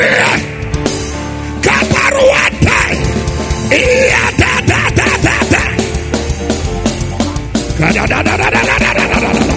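A crowd of many voices screams and shouts continuously and loudly, a dense roar of praise rising and swelling over steady instrumental music throughout.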